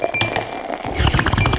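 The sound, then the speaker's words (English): Glasses clink together in a quick toast: a few bright, ringing taps, with a burst of clattering contact toward the end and no talking. “There is a cheers and a bong rip to that.”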